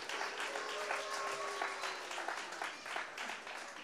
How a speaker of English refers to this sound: Hey, again, to all the kids, we want to give you a round of applause. That was brilliant.